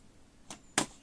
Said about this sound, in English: Open the door. Whoosh.